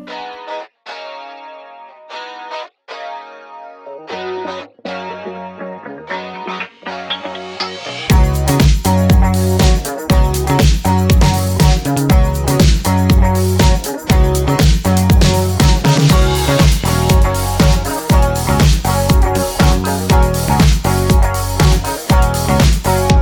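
A guest band's song opens with a sparse, effects-heavy electric guitar figure, then drums, bass and distorted guitars crash in around eight seconds, driving on loud and steady with no voices.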